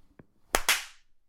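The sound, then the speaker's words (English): A faint tick, then two sharp, loud hand claps in quick succession, the second with a short fading ring, used as a clapstick to sync a camera recording. No one speaks. “Do I gotta clap? Do a clapstick again.”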